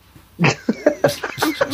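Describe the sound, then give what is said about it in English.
A female domestic cat makes a quick run of five or six short, chirpy meows and trills, moderately loud, with no other sounds around them, after wanting to be petted and signaling she was done. “The NMS kitty was just wanting some pets, and then she just bid me tell me she was done, so.”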